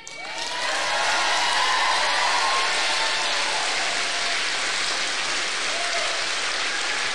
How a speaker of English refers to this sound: Everyone's like, I know they're cheering out of sympathy.